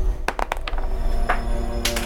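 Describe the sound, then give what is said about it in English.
Dice clatter and tumble off the table in a quick burst of sharp clicks, then a couple of lighter knocks and a final rattle as they come to rest, with a low steady hum underneath. “You're not really good at keeping your dice on the table.”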